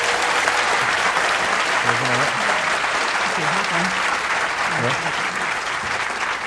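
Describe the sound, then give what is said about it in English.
An audience at the Edinburgh International Book Festival claps for Gregor Fisher and Melanie Reed, steadily and loudly for several seconds, a dense, even wash of applause with a few faint voices murmuring underneath. “Yes, let's have a big clap.”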